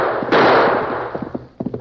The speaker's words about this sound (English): Once more, Big Jack turned in the saddle and fired at the masked figure behind him. But again, there was no return fire.